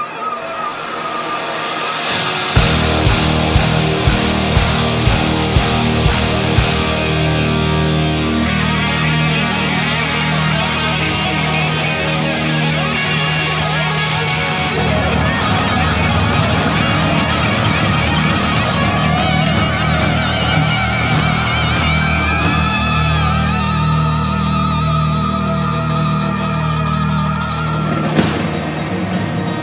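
A loud hard rock track plays without vocals: dense, distorted guitars over a heavy, steady bass line, with pounding drums kicking in after a short opening and driving on throughout.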